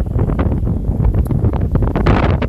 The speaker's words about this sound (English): So, brothers and sisters, I know that this broadcast is very windy right now. I really understand that.